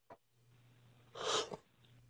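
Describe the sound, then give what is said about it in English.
A single short, breathy yawn, a quick rush of air over a faint steady hum, with a small click just before it and no talking. “and I gotta yawn again.”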